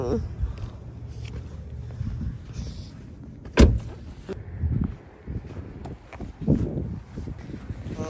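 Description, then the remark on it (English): A car door opens and then shuts with a single solid thump partway through, over low rumbling outdoor noise and some muffled voices. “He's gonna open the door for me.”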